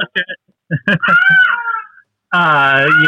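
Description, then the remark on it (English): A female cat gives a long, drawn-out meow, rising and falling in pitch, among brief voiced sounds and followed by another sustained tonal cry. “Do you hear the cat? I do. She has made her appearance.”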